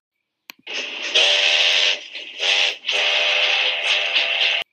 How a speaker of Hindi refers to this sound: ये क्या, ट्रेन तो छूट रही है, क्या उन्होंने बहुत देर कर दी?